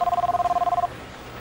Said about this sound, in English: Get to the phones. It's ringing